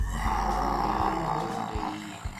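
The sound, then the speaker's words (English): A deep, sustained monster roar rumbles continuously for a couple of seconds, loud, with a gravelly, growling texture and slight pulsing swells throughout. “You hear a roar.”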